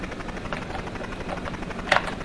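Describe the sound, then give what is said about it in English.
A steady helicopter rotor drone from a rescue video game, as the helicopter flies low past a skyscraper picking up victims against a timer; a dense mid-range whir with faint periodic chop and a brief sharp click near the end. “Get out of my helicopter.”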